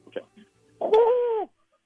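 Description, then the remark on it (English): A radio show caller vocally imitates a pigeon-like bird call to call the Nor'easter Bunny, with a short throaty sound followed by a sustained, warbling coo-like note lasting about half a second, fairly loud. “There's a little more tongue involved. Like a pigeon.”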